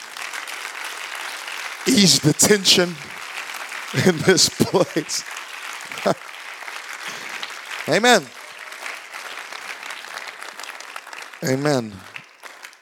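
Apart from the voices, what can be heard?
audience clapping hands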